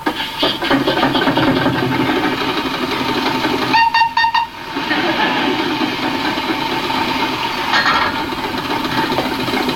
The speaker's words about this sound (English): And in this scene, we see Fraser aboard a steam engine trying to get power underway to move the engine and organ. But sadly, instead of movement, they get music.